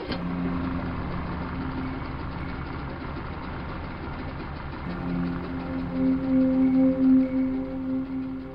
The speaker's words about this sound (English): Deep in the Everglades, graveyard for secrets and sins, an outboard motor rumbles a funeral dirge late into the night.